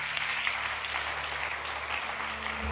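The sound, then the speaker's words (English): An audience claps together in sustained applause for visiting guests, a dense, steady patter of many hands at moderate volume, with a low electrical hum underneath and no voices. “Why don't we give our guests a good hand clap today?”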